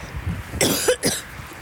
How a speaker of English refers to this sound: That was just a cough from talking so much, not from coronavirus. Don't worry, I just got a dry mouth.